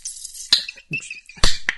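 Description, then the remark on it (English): A can of Guinness cracks open with sharp metallic pops, two loud snaps, followed by a bright hissing fizz as the widget foams, with no one talking. “It's a can of Guinness. It has a widget in it that makes it foam, so you get that distinct...”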